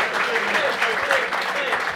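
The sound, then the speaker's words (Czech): Steady, dense applause from a sizable audience fills the whole stretch at an even level, with faint crowd voices murmuring underneath. “slyšíš ten potlesk?”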